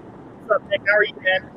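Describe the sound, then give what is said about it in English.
A steady low rumble of car interior noise runs beneath a muffled, narrowband phone-line voice speaking a few short syllables. “Sorry I'm in the car and have to do this only through audio.”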